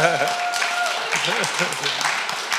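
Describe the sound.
A crowd applauds steadily for a few seconds, a dense wash of clapping with voices calling and cheering over it, fairly close and sustained throughout.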